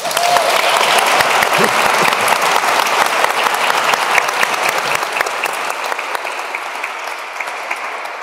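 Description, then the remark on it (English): A crowd applauds steadily for several seconds to welcome guest Pádraig Ó Tuama, a dense wash of clapping with scattered sharper claps, tapering slightly toward the end. No one speaks over it. “We have a lovely crowd here, all gathered, excited for this conversation, and we'll ask this crowd now maybe to welcome our guest today, Pádraig Ó Tuama.”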